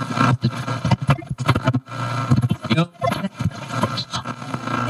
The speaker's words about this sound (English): With a nod and a smile, he put the truck in reverse and pulls out of the driveway, the bundle of camping supplies in the back swaying ever so slightly against the bungee